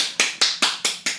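A single person claps five times in a quick, steady rhythm, each sharp slap close and crisp with a short decay, no voices.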